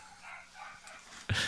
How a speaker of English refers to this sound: My dogs are not holding back right now. No, they. I think you have ghosts in the house. That's what they're barking at.